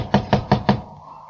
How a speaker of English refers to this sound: I tell you, this boarding house can't be my mother's house. Knock again. Oh, this broken-down old shack, my mother's house? Knock again, George Bailey.